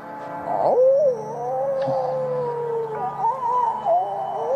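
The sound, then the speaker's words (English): Whale song: long, eerie moaning calls that slide up and down in pitch, sustained and fairly loud for several seconds with no talking. “It's time for whale noise.”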